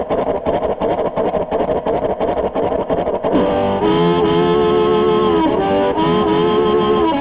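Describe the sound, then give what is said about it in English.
A harmonica mimics a train: a loud, steady chugging rhythm of breathy pulses gives way to long, wailing whistle notes that bend down and up in pitch, with no voices. “on the harmonica right now, making the train whistle”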